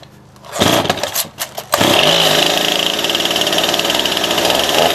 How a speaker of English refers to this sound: Oh, and here comes the chainsaw.